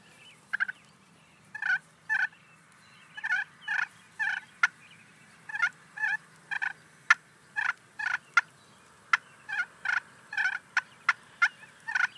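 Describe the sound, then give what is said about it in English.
A turkey call imitates a turkey's content call: soft rolling purrs broken by sharp, clucking notes, repeated in an uneven rhythm for several seconds. Clear, with no talking. “So when a turkey's purring like that and clucking, that's a content call.”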